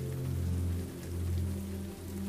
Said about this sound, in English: You enjoy the melodic rain as you surrender to rest.